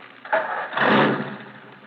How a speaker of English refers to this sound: Now start your engine.